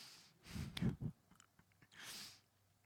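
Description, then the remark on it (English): Someone works a cough drop around in their mouth: a brief burst of wet clicks and a few soft crunchy thumps, followed by a breathy exhale, with no talking. “I am feeling generally healed from the last Sunday, the cold that I had, but I do feel a little tickle in my throat, so that's why I'm popping a cough drop, if you're wondering.”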